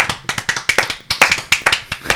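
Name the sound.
clapping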